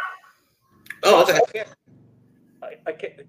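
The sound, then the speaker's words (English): A dog barks loudly a couple of times, then a few quieter, shorter barks follow after a brief pause, with a low hum underneath. “Once you mentioned dog show, my dog started barking.”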